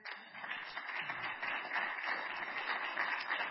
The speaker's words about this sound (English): It's all right. You can clap your hands.